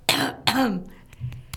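Two sharp, close coughs in quick succession, the second drawn out with a raspy vocal tail, followed by a soft throat-clearing grunt and a faint click.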